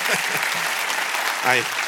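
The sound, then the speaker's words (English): An audience clapping for God after a sermon, a dense, steady wash of applause throughout, with brief voices calling out beneath it and one voice rising clearly toward the end. “I get embarrassed when you guys do that, but let's give claps to him, because it's all his word.”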